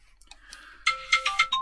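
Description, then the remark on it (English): A phone ringtone plays a short electronic melody, starting softly with a few quick tones, then growing louder as bright notes repeat in a rapid, bouncing rhythm. “A phone call.”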